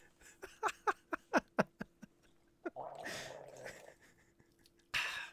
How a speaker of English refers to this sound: I'm gonna take a sip of my Sprite.